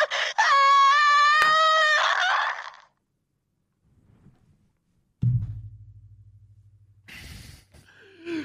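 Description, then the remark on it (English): A voice imitates a strained, muffled scream over the comms for about two seconds, wavering and nasal like it's coming through a radio, followed by a low electronic hum and a few short bursts of noise. “We're just gonna like hear super muffled screams over the comms as Veritas just goes out into the black.”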